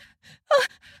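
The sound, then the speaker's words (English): A woman gasps sharply and loudly as she climaxes, with soft breathy huffs before and after. No words are spoken. “I gasped and sputtered.”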